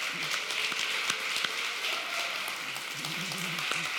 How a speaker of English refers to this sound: Come on, you can clap better than that.